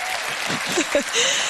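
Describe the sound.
Steady audience applause, a dense wash of many hands clapping at an even level, with faint voices and a brief cheer rising through the clapping.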